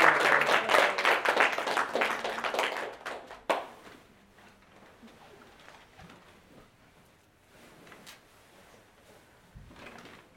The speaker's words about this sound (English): That's it. And continue clapping his name as we